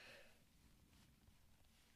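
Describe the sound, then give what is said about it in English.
A single sneeze bursts out right at the start, short and breathy with a sharp nasal edge, then fades into quiet background noise with no talking. “Sorry. Sneeze.”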